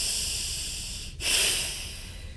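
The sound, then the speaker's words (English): Long, deep hissing breaths: a steady airy hiss, a brief pause, then a second, slightly louder hissing exhale that carries on to the end. No one talks. “Long, deep, and the hissing sound should be there.”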